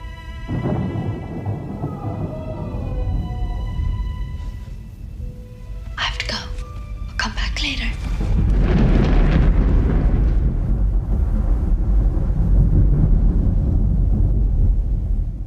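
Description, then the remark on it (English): Eerie tones and breathy, whisper-like bursts give way to a loud, sustained rumble of thunder that rolls on, deep, through the second half. “We have a ghostly girl, we have a jack-o'-lantern, we have thunder, we have screams, all the elements of horror.”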